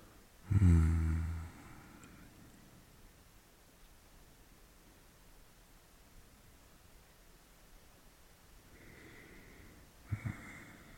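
Rain falls at night as a steady, even hiss throughout, with a brief louder low rumble near the start and a couple of soft bumps toward the end. No one speaks.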